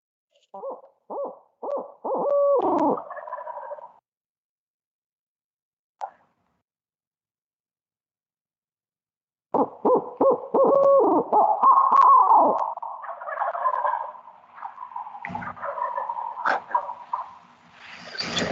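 An owl hoots in a quick rhythmic series of short notes, then after a pause breaks into a long, loud, wavering run of cackling, laugh-like calls with no talking.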